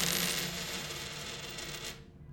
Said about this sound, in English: I believe this sum of coins will do.